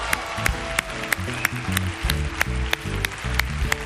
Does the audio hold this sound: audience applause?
yes